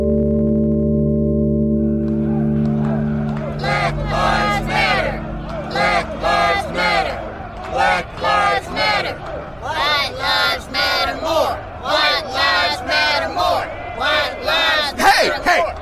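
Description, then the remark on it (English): A low steady hum gives way to a crowd shouting loudly in rhythmic, repeated bursts over the acquittal of one of Freddie Gray's killers, like an angry chant, many voices rising and falling together. “What are you people shouting for?”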